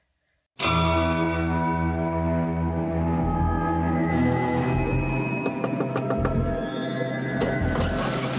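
Ominous tolling bells ring out loudly over a deep, sustained droning swell. The dark, dramatic tones fill the whole stretch without pause, and no one speaks.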